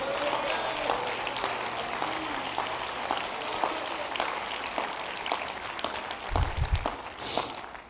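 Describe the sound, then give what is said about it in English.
An audience claps their hands in sustained applause, a dense steady patter of many hands, with a few louder thumps and a brief rush of noise near the end. “In this house, clap your hands if you believe it.”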